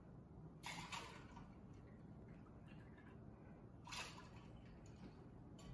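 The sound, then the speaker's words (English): Four ounces of Caldies cold brew coffee are poured into a cocktail in two short, splashy bursts a few seconds apart, fairly quiet, over a low steady background rumble with no talking. “We're gonna do 4 ounces of a Caldies cold brew.”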